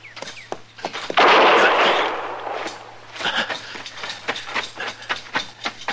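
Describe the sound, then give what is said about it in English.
A volley of gunshots in which Chester is hit in the arm: sharp, loud cracks fire in an irregular rapid string, with a brief rush of noisy rumble early on. No one speaks. “Now, you've been hit, Chester. Well, he got me in the arm.”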